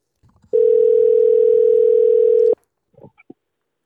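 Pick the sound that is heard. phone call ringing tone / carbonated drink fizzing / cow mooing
phone call ringing tone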